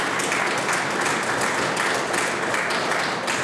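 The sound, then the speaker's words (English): Many legislators in a legislative chamber clap together for new fossil fuel development in a dense, steady burst of applause that stays loud and even for a few seconds, with no voices rising above it. “Everybody else in this place is clapping for new fossil fuel development in a climate emergency.”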